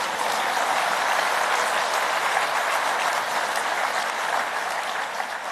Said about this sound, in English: Let's clap hands for the baby boomers.